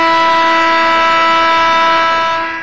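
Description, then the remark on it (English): A loud game show buzzer blares in one long, steady, harsh tone rich in harmonics, holding a single pitch for over two seconds before tapering slightly at the end. No one speaks. “And we even have a buzzer associated with when we do the game show.”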